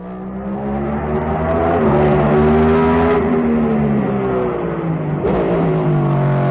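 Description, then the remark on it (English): A race car engine roars loudly and steadily on a race track, its pitch climbing and falling through gear changes as it revs, continuous with no talking. “At this time, please start your engine, pull off a pit lane, and make your way onto the track.”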